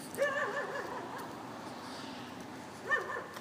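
A dog gives two short, whiny yips, one near the start and another about two and a half seconds later, set against a steady hiss of background noise.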